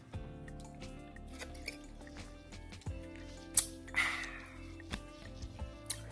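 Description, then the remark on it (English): Quiet, wet sipping and slurping of a drink of clear vodka at home on a rainy day, with a few small clicks and a short liquid burst midway, over a low, steady background hum. “I'm here chilling in my crib with my puppy, and I just like to say I love y'all while I sip this drink right here.”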